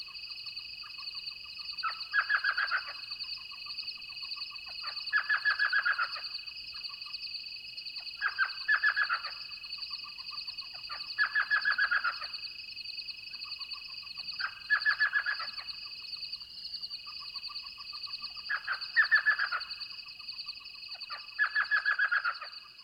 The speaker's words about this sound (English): Only 6 inches in height, elf owls are found throughout southern Arizona, their repeated yelps being a signature sound of the nighttime soundscape.